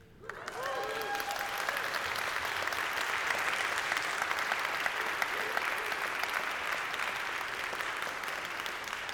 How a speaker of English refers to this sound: I didn't say that so you would clap, to be clear, but thank you.